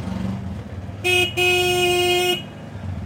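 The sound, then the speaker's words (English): A motorized rickshaw ride taken by two sisters travelling to the village where they grew up: a low engine rumble throughout, broken by two loud horn honks, a short toot followed by a longer sustained blare, with no talking. “To get here, the sisters take a bus to a motorized rickshaw.”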